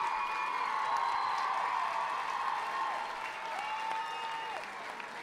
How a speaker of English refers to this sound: And as you can tell by that cheer, the player with the most fans, it would seem, has put the Cobblers immediately back ahead. Absolutely brilliant.